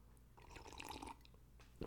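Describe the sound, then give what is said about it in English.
A quiet sip of water: a brief slurp with soft wet mouth sounds and a small gulp at the end, with no talking. “Quick sip of water.”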